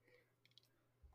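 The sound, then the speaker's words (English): The plastic dice bubble of a Trouble board game is pressed, giving a quick cluster of sharp clicking pops and a brief rattle, fairly quiet, followed by a soft low thump. “The dice are in the bubble game.”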